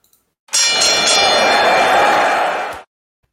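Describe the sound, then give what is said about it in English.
A single bright bell is struck once and rings out loudly with a shimmering metallic tone, sustaining for a couple of seconds before being abruptly cut off. No talking accompanies it. “And to do that, I'm going to ring the bell.”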